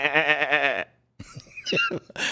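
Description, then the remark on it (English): A foreign goat from Mallorca, off the coast of Spain, lets out one loud, quavering bleat lasting under a second, followed by a short silence and then a few brief, indistinct sounds. “We have a foreign goat. We go live to the scene of Mallorca.”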